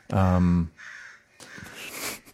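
A loud, harsh crow caw rings out, followed by a quieter second caw and then a rougher, noisier call, all within a couple of seconds.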